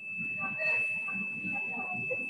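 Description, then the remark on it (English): A golf cart's reversing beep sounds as a steady, high-pitched electronic tone held through the whole moment, with muffled voices murmuring underneath. “Oh, backing up a golf cart?”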